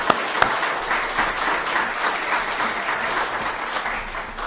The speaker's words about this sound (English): again, to all the volunteers, the Oasis volunteers, who just do a tremendous service to Snowden Baptist and to the community with the ministry that they so faithfully execute each Friday night. So would you join me again in just applauding for them?